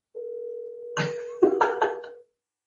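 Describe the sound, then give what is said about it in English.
A steady telephone dial tone, heard while phoning someone back after the call dropped, hums for about two seconds, loud, with a few brief clattering bursts over its second half before it cuts off. “All right, let me get him back on the phone real quick.”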